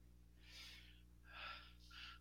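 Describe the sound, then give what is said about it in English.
Three heavy, breathy exhalations in slow succession over a call, airy and hissing over a low, steady electrical hum, with no talking. “Let me see if I can all fix that heavy this, breathing.”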